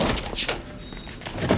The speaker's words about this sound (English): Here, let me get the door for you.